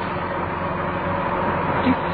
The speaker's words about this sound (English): Oh, roads are empty, that's something. Your bus is running well.